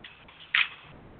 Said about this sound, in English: It's raining again.